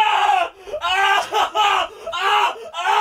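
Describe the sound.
A voice imitates a fly screaming, letting out four shrill, strained cries in quick succession. The screams are loud and separated by brief gaps.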